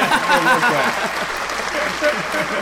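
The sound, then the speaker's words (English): A loud burst of applause-style clapping sound effect, a dense steady wash of many claps lasting a few seconds, with a voice briefly mixed in near the start. “Now, I get the big fucking clap first.”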